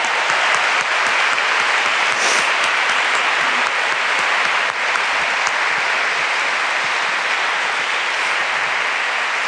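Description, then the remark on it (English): Sustained applause from a conference audience giving a speaker an enormous round of applause, a dense, steady clatter of many hands clapping at an even loudness for about ten seconds, with no voices rising above it. “Well, before we do that, can we give you an enormous round of applause?”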